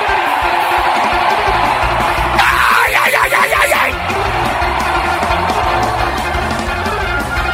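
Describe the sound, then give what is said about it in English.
A large audience erupts in loud, sustained shouting and cheering of yes and praise, a dense wall of voices with a sharper burst of yelling in the middle before settling into a continuous crowd roar. “Come on, scream a yes and praise.”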